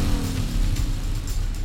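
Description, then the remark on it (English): A motorcycle ridden by someone dressed in black with a black helmet revs and accelerates right next to a car pulling out of an office parking lot onto a street. It is a loud, steady low rumble with a rising whine, without any talking. “And just as I pulled out, this guy in a motorcycle out of nowhere, all dressed in black and a black helmet, comes speeding up right next to me.”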